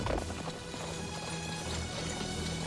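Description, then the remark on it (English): Rapid hoofbeats of horses galloping together in a chase, a steady, driving clatter mixed into a dense, loud wash of action sound with no talking. “I'm a sucker for horse chases.”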